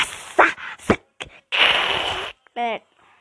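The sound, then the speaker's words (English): A person imitates a cat hissing: a few short, breathy bursts build to one long, harsh hiss, then a brief voiced whine follows. No words are spoken. “Cats also hiss like this.”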